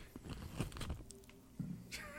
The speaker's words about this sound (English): Yeah, wait until you're mid-chew before you start talking again.